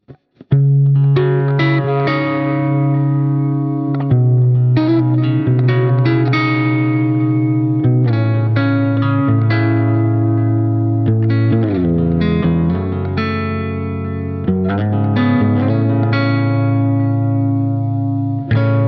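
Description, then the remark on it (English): A finger-picked Gres Mendocino electric guitar plays alone through an edge-of-breakup amp preset, warm notes with a slight grit ringing into each other, with a clear tone and steady level throughout. “Here's the Edge of Breakup preset played with a finger-picked Gres Mendocino.”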